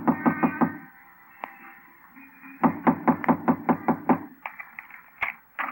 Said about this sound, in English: Come on. It's locked. I can hear them moving around. Knock on the door.